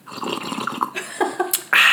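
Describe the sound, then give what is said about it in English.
Someone noisily sips hot lemon water: a few short, wet slurping draws, then a louder breathy rush of air at the end. No one speaks. “Just having a sip of my lemon hot water.”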